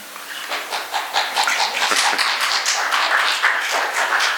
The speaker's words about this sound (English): You're probably clapping a little too soon.